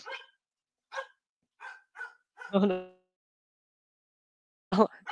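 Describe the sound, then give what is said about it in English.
A dog barks in a series of sharp, separate yaps, about five quick barks followed by a pause and one more loud bark near the end, with no talking over them. “So, sorry. Here's my dog here.”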